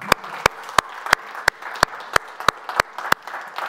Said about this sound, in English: And why don't you actually give a clap to those who are at home?